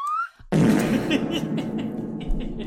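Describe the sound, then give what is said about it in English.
A brief rising whistle tone cuts off into a loud, sustained fart noise sound effect, a raspy, sputtering blat that rumbles on for a couple of seconds with no talking. “He's probably going to put a fart noise in instead, or a slide whistle.”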